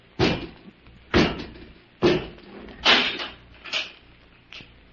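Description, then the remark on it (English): A door slams shut with a loud bang as Robot 2 closes it, followed by several more heavy thuds about a second apart, each slightly weaker than the last. No voices are heard. “Come out and close the door, Robot 2.”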